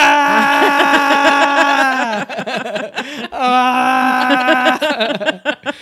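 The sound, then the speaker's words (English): A man yells and wails while riding his bike home, letting out long, sustained loud cries, with a brief pause between two drawn-out bursts and some broken, moaning sounds in between. “He's driving his bike and he's just yelling on his bike.”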